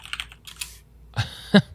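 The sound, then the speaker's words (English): Typing on a computer keyboard while searching Urban Dictionary: a quick run of soft key clicks, a short pause, then two sharper, louder clacks, with no voices. “We're keeping my keyboard sounds in there, baby.”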